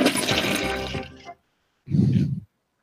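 A loud toilet flush rushes and gurgles for just over a second, cuts out, then a shorter burst of swirling water follows after a brief silence.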